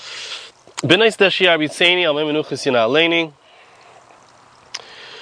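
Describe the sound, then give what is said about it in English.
A steady rush of running stream water fills the background throughout, moderately loud and unbroken, with a man talking over it for a few seconds in the middle. “gives me this beautiful location with the running water, as you can see, as you can hopefully hear as well.”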